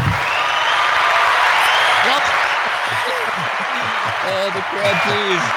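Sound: crowd applause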